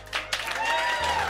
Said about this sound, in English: Ladies and gentlemen, welcome to the Potosium. You know the rules. Give us a round of applause. Stop clapping. I can see you. Stop clapping. Add some cheering.